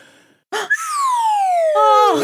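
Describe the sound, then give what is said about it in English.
A slide whistle plays one long, steady downward glide, its bright, breathy tone sinking smoothly in pitch for well over a second after a short puff of breath at the start. “That's a slide whistle.”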